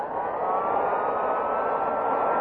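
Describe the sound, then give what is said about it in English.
A vacuum cleaner runs steadily as a maid vacuums an apartment, a loud, continuous motor whir with a breathy rush of air and a slight upward drift in pitch. No one speaks. “Wait, honey, I'll turn off the vacuum cleaner.”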